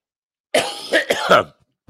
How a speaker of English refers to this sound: Pardon me with the coughing, folks.